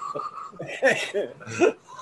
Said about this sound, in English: Oh shit, the cough shards.